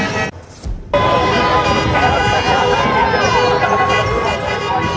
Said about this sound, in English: And this was downtown Kelowna this afternoon, a steady stream of honking horns as vehicles, many adorned with Canadian flags, circled their way down Bernard Avenue and Water Street.